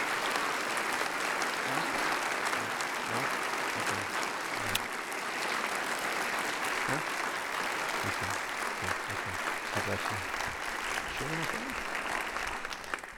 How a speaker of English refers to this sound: Would you give her a big round of applause?